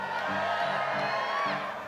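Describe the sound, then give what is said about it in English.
A church audience shouting and cheering together during a sermon as they turn to Luke 18, a steady, dense roar of overlapping whoops and yells sustained for about two seconds with no single voice standing out. “Y'all are shouting like, oh, you lost yesterday or something.”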